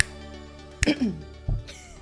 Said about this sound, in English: I just casually just clear my throat over your...